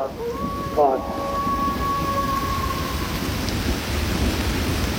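Low thunder rumbles steadily beneath a constant hiss of heavy rain, with a brief tonal whine early on before the storm noise carries on evenly to the end.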